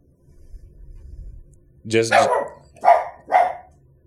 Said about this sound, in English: He said, yeah, you heard that? The dog's like, yeah, give us some gas money. He said, if you want me to stop barking on this podcast.